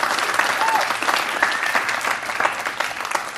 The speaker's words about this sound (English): Let's give the Lord another clap offering. That was just awesome.